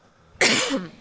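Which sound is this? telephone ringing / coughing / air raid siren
coughing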